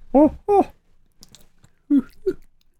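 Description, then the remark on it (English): Faint chewing by a man: soft clicky, crunchy bites in a loose rhythm, broken up by a few short, loud voiced grunts or murmurs with no clear words. “He's chewing on his stupid thing.”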